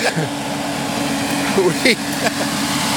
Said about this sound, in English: And so there, we're gonna get run over by an oil truck now.